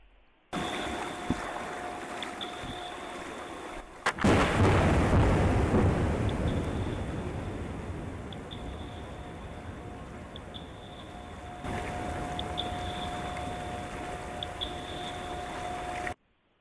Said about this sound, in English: Yeah, so what you're hearing there is an air gun being towed by a ship that's hunting for oil and gas beneath the ocean floor. And, you know, it's a process that's similar to sonar